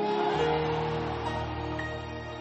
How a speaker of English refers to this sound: Why do you think people scream? It is the sword that is cutting. It is pricking them.